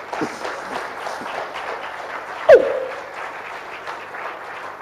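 An audience claps steadily in a dense, continuous patter of many hands, with one sharp, louder thump cutting through midway; no one speaks over it.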